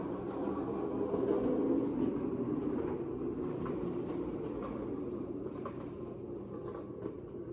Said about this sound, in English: That sounded like it had 4 engines on that jet.